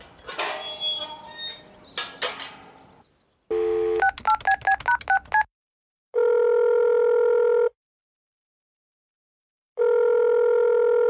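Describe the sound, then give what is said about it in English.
A brief clatter of a telephone receiver being picked up in Chicken's house, then a quick run of about eight touch-tone dialing beeps, followed by two long, steady ringing tones separated by a silent pause. “Why don't you use the phone over there in Chicken's house?”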